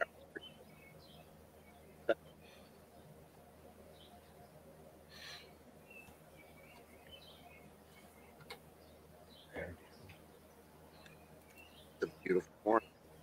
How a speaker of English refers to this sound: Yeah, I hear a lot of birds just going. They're going crazy over here. It's awesome.